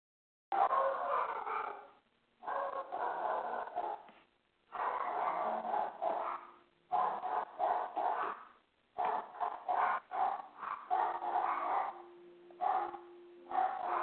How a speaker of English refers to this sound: Someone has a dog in the background.